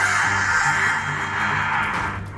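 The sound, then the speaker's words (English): A horrifying shrieking noise from a shape roaring through, thundering out through a canyon and echoing. It holds loud and steady for over two seconds, a grating high-pitched screech over a rough lower rumble, easing off slightly only at the very end. “This shape roars through here once more and makes that horrifying shrieking noise.”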